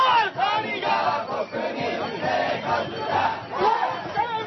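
A large crowd of at least 100,000 protesters chants loudly in the streets of Tokyo, Japan, on one of the hottest days of the year, many voices shouting together in a steady rhythmic cadence with brief dips between phrases.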